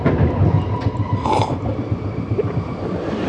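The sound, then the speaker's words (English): A train rumbles steadily along the rails, a loud mechanical roar with a rhythmic low clatter running underneath throughout, and a brief higher squeal partway through. “At last, the train stopped at Granny's station.”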